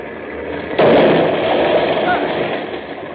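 A truck is driven crashing through doors: a low rumbling lead-in breaks into a sudden loud, harsh smash, followed by a sustained, noisy roar of grinding and rattling that slowly fades.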